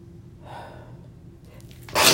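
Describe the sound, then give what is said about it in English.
A single loud sneeze: a soft breathy intake builds up first, then a sudden sharp, bursting exhale at the end. No one speaks. “Ooh, sneezing.”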